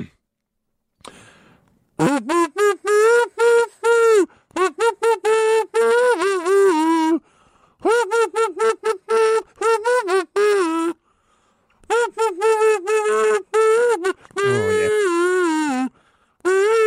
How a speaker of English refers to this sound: can you give us another rendition of your song that you played on the kazoo?